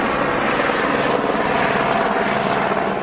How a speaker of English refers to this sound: A few minutes later, a police helicopter could be seen overing the sky, providing extra light and also a bird's-eye view to men and women on the ground.